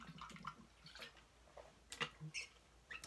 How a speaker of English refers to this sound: Now, before I get into my award winner, let me take another sip of water because I am a little... I'm starting off a little dry.